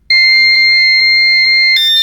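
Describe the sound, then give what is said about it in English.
A loud, steady electronic tone of a Holtzman wave link connecting holds one bright buzzing pitch for nearly two seconds, then shifts abruptly into a harsher burst as the link engages. No voices are heard. “Establishing Holtzman wave link with DSSV pressure drop.”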